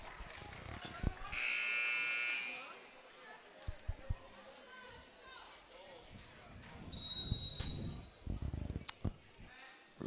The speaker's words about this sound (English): Second quarter about to start off. And there's the buzzer. There it goes.